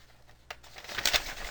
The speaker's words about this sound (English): Now, you hear me rudely rattling paper next to the microphone. We all know what this just might maybe mean. It means that I'm going to read the script.